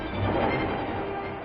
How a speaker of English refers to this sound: For 76 years, L trains clattered by, carrying people to work and home again. But the old steel skeleton outlived its usefulness. Passengers dwindled. And so the L is being torn down.